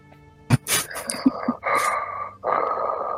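Loud, heavy breathing, with long raspy inhales and exhales, preceded by a sharp snorting burst and a few shorter huffs. No one speaks.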